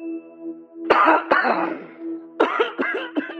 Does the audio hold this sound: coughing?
yes